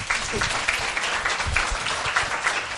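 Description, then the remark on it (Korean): An audience at a live travel talk event applauds steadily, many hands clapping in a dense, continuous wash of sound that stays fairly loud and even throughout. “이 박수는 그리고 진짜 여행수다를 사랑해주시고 이렇게 현장에서 늘 들어주시는 여러분들께 드리는 박수이기도 합니다.”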